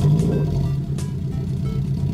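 A car engine rumbles loudly and steadily, its deep drone rising slightly at the start as if revving, with no voices.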